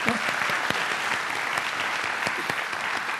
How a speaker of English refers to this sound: So let's just clap for her, even though she's not here.